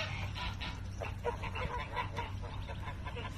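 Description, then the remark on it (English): A flock of ducks and geese calls continuously near a pond, overlapping quacks and honks forming a busy chatter over a low, steady background rumble. “It's a busy day at the pond.”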